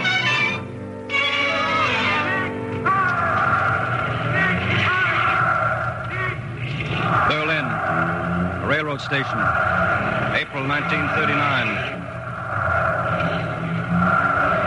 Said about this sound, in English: April 1939. Cars are leaving now. The greeting ceremonies are over, and I stand with a newspaper friend watching the cultured gangsters depart for the banquet halls.